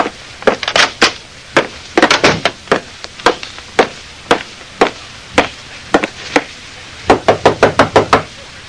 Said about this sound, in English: Nobody answered my knock at Janie's dressing room. I tried the doorknob, was just about to go in when...